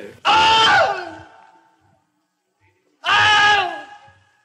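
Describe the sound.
Two loud, strained screams from a man, each about a second long with a falling pitch and a breathy tail, separated by a short silence; a voice imitating the scream of pain of a man being bitten by an alligator.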